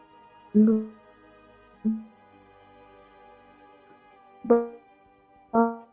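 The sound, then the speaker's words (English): A choppy, garbled voice on a call cuts in and out, with four brief clipped bursts of sound separated by gaps of near silence over a faint steady hum. “you're breaking up a little.”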